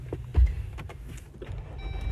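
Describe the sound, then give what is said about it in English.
A car engine is started for a drive to Gillette; it turns over and catches, a low rumbling idle with a heavy thump early on and some clicks, followed by faint high electronic tones near the end. “I'm gonna turn on the car and turn you on at the same time.”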